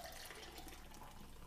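A steady, soft splash of a drink being poured into a glass, continuous for a moment and fairly quiet, with no voices.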